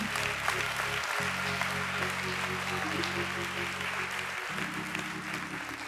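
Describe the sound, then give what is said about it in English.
A crowd claps steadily and densely throughout, giving the Lord a hand clap of praise before a prayer, a continuous wash of applause, while sustained low organ or keyboard chords hold underneath, shifting to new notes twice. “Come on, give the Lord a hand clap of praise before I pray.”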